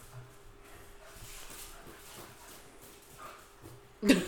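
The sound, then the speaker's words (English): A dog with the zoomies runs around in a circle excitedly, with soft scuffling and patter over quiet background, ending in a sudden loud thump or yelp right at the end. “My dog's just running around now in a circle. He got the zoomies.”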